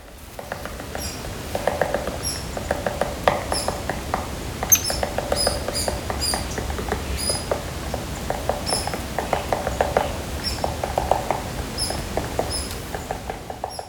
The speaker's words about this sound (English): But if we don't find our American three-toed woodpecker, we're surrounded by plenty of other woodpeckers tapping and squeaking away.